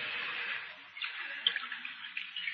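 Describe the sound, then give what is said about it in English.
Liquor pours from a jug into a cup in a steady splashing stream, with a few brief gurgles and glugs toward the end. No one speaks. “Here's the jug, Mr. Hawtrey, and I brought you a cup, too. Pour me some.”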